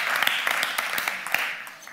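An audience claps steadily for two seconds for a team member who works behind the scenes, a dense wash of many hands with sharper individual claps popping out irregularly, fairly loud throughout and with no voices on top.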